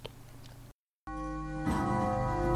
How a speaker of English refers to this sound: The hour bell had sounded.